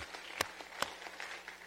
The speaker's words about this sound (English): Let's give a hand clap to the Lord Jesus Christ, y'all.